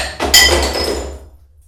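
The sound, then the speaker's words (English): A drinking glass gets knocked over, spilling a drink everywhere, a dull thud followed by a bright ringing clink that fades out over about a second, with no one talking. “My spilled the drink everywhere.”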